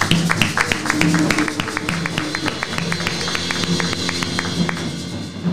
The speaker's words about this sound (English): Let's put a hand clap on that, guys.